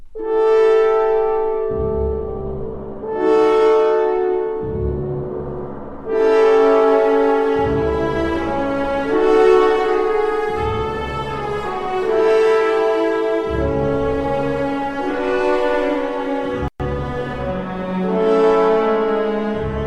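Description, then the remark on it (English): A full orchestra imitates the pealing bells of St. Basil's in Mussorgsky's music, using horns, harp, timpani, gong and pizzicato double basses: loud, sustained brass-heavy chords ring over deep, booming low strokes that repeat about every second or two, with no voices. “We hear the bells of St. Basil's, imitated by horns, harp, timpani, gong, and pizzicato double basses.”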